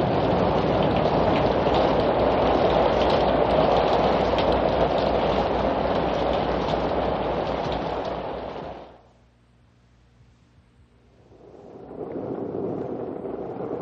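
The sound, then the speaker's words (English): Steady, dense rain pours down with a loud hiss, then drops away to near silence and a faint low hum before the rain returns, softer than before. “Listen. Listen. Rain. Rain. Cool water.”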